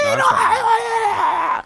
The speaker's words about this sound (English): Who hears the screaming from Morty? You hear. Probably not you.